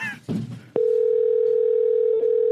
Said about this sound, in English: Oh, seriously? He couldn't even set it up so it skips the ringtone. I hope he answers. I really hope he answers.